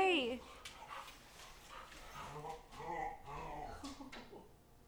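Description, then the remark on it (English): A dog whines with a high, sliding whimper, then lets out a series of excited yelps and barks, moderately loud, with possible faint voices in the background. “Does your dog go crazy too?”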